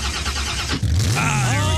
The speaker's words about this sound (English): I think we have a soundbite of that actual truck